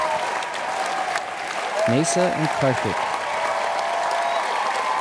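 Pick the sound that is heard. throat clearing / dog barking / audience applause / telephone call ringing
audience applause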